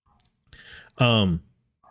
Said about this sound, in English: I hear some dogs barking outside. One of my ears is kind of listening. Like, is there trouble? They're not my dogs, but they're the neighbor's dogs. They're going throwing a fit.